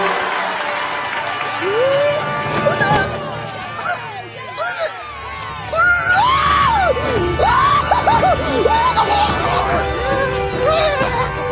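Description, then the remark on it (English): A man screams hysterically, with rising and falling shrieks over a noisy, excited crowd of overlapping voices that continues throughout, growing louder in the second half. “The Warriors of Kyoshi also features a very silly fellow who foams at the mouth and screams when the Avatar approaches.”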